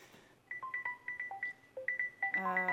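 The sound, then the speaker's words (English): A 20-minute kitchen timer goes off with a quick run of about ten electronic beeps in shifting two-tone pitches, ending in a fuller, layered chime. No one speaks. “That was our 20-minute timer.”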